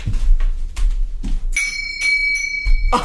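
A bell is struck once and rings with a bright, sustained metallic tone that slowly fades. It sits over low rumbling background noise and a few thumps of handling.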